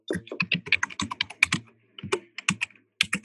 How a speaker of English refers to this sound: We can hear you typing.